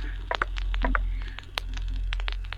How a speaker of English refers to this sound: It goes silent for a moment, and then you hear footsteps.